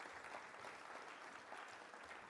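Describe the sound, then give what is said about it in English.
A crowd applauds steadily, a dense wash of many hands clapping at once, sustained and even in loudness from start to finish with no voices rising above it, as a volunteer comes to the stage. “Round of applause for my volunteers as he comes to the stage.”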